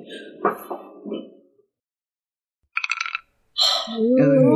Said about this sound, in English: I was going to ask you to roll a d6 for that purpose, actually. It might be a 2. I'm going to use some physical dice. Ooh, give me some of that sweet, sweet Foley.